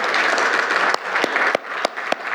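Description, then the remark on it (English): A crowd claps steadily for a couple of seconds, a dense, even patter of many hands with a few sharper, louder claps popping out above the rest. “he should be applauded too, by the way.”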